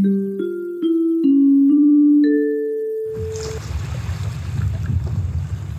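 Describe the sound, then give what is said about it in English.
A short sequence of stepped musical tones gives way to a steady, loud rushing of ocean waves with wind noise, continuing for the last few seconds with no voices. “We're trying to give you the sound of some ocean waves there.”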